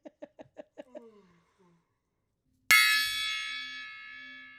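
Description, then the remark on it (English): A quick run of laughing, chuckling vocal bursts fades into a brief silence, then a gong is struck once, hard, its shimmering metallic ring sustaining and slowly dying away. “Clang, clang on the gong, trolley.”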